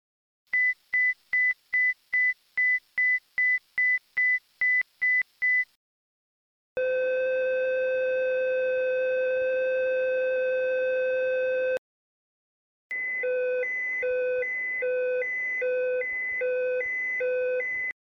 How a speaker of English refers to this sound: Okay, so the first sound that you heard there was actually the emergency tone, the second sound was the caution tone, and the third sound was the warning tone. The most important, of course, is the emergency tone,